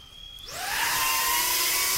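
An FPV drone flown by a pilot wearing goggles on a fly-through around a house. After a faint high tone, its motors spin up, the whine sweeping upward in pitch and settling into a loud, steady, buzzing roar with no voices.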